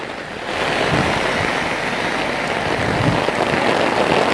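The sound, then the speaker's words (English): Heavy rain pours down in a dense, steady hiss, loud, with countless drops pattering on a surface and no voices. “It's raining a lot.”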